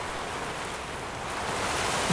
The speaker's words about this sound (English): Wow, the rain is wilding out. It's like a wave hit the building.